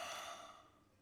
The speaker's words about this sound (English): Ooh, that's when I yawn when Spirit merges.